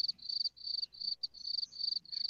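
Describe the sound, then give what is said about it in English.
Crickets chirp in a steady, high-pitched trill, pulsing in rapid bursts with brief gaps, clear with no voices over them. “When the crickets come out.”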